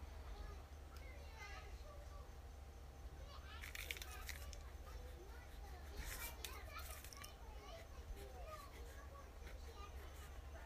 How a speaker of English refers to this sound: Not sure how much of that background audio my phone is getting. But, you know, just in case you were homesick for the blabber of small children, you know, you might have missed it horribly.